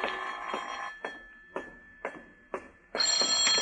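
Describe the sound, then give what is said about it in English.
A telephone bell rings loudly, a sustained metallic jangle that breaks into four short, evenly spaced rings before ringing continuously again: the telephone company calling Philip Marlowe's phone in the morning. No voices are heard. “This is the telephone company calling, Mr.”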